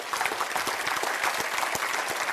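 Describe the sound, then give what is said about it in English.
A crowd claps steadily, a dense wash of many hands applauding together at a fairly even, sustained level with no voices on top. “I'm going to wait while you clap your hand there.”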